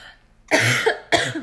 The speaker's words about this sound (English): I'm so sorry. I'm talking so much. I'm like coughing.